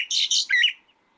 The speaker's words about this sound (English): It's got a call, as I said before, and they've also, birds have a song. And the song is something like this. See, it's a difference between its call and a song.